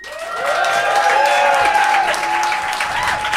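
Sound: audience applauding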